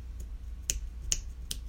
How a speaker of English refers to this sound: Can you snap your fingers?